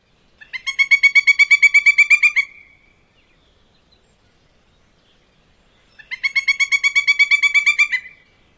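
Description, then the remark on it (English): Two loud, clear bursts of rapid, ringing pileated woodpecker calls, each a fast series of about fifteen high notes lasting roughly two seconds, separated by a few seconds of quiet; no one speaks. “So here are the pileated woodpecker calls.”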